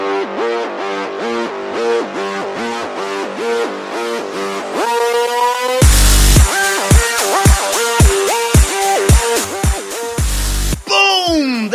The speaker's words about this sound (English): When that bass crashes in, you know it's time to begin.